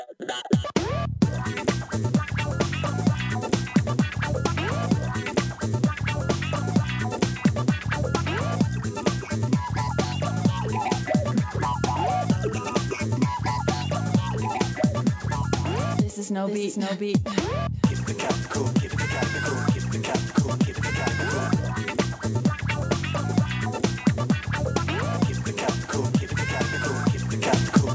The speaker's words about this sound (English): you're walking down the road and you just want to start just rocking out to the Sugar Cat theme